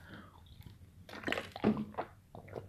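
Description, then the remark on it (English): Someone takes a drink of water: a series of wet gulping and swallowing sounds, moderately loud, in uneven bursts with short pauses between, and no talking. “I'm drinking some water.”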